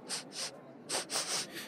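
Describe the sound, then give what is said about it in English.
A person imitates someone bending down to the ground and sniffing it, making five quick, breathy nasal sniffs in two short bursts, fairly loud, with a brief pause between the groups and no talking. “And she bends down and like gets to the ground and starts sniffing.”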